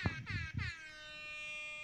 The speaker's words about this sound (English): I have the rap air horn on my phone. Yeah, that's our one sound drop, so get used to it.